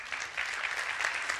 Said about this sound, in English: You're not allowed to clap during debates, but you can clap on that one. That's okay.